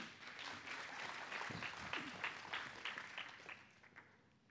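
audience hand clapping

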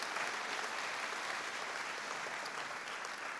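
audience applauding

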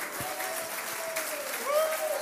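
audience clapping hands

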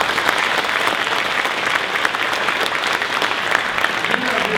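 audience applauding

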